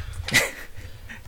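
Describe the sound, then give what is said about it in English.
A small dog lets out a single short, high-pitched yip or whimper, with a low rumbling hum in the background and no talking. “I've passed off the little dog.”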